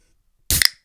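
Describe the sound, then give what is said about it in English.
A can of Iron Brew soda snaps open with a sharp metallic crack, then a short burst of hissing fizz that fades within a fraction of a second, after a moment of silence. “All right, let's get a nice fizz from it.”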